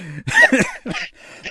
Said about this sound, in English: You got me over here coughing, man. Holy shit.